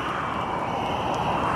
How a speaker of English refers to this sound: And then there's the wind sound.